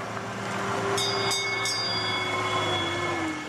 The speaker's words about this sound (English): Finally, the tourist train gets to the big house, Westport House.